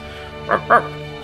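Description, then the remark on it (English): A dog, Bark, barks twice in quick succession, two short, sharp woofs against a low, steady background hum. “because I'm sitting here, as I said, all I am my own, but I don't mind because I'm here with Bark.”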